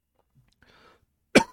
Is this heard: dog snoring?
no